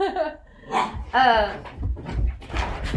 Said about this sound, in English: Again, that's puppies. Playing doggies, playing doggies.